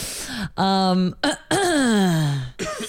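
Loud throat clearing right into a microphone in three voiced bursts, the last one drawn out and sliding down in pitch, with brief gaps between them and no speech.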